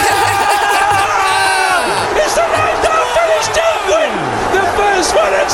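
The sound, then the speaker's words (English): A dense, loud roar of a darts crowd carries steadily throughout, with overlapping shouts and whoops rising and falling in an excited, cheering swell as Van Gerwen goes for treble 19. “The crowd erupts.”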